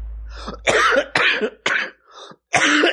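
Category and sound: human body sound, coughing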